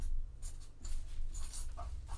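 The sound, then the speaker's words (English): A Sharpie marker squeaks and scratches across paper in short, bursting strokes, its bright, airy squeals rising and falling over a low steady hum, with no voices. “I got a Sharpie.”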